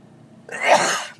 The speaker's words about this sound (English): I'm in my mobile studio now and I'm about to sneeze, I think.